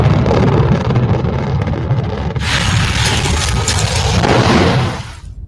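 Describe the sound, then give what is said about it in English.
A shaken thunder sheet, a piece of sheet metal, produces a deep, continuous rolling rumble that swells with a brighter metallic wash halfway through, then dies away quickly near the end. No one speaks. “It's a piece of sheet metal, and you can get a wonderful low frequency rumble out of it.”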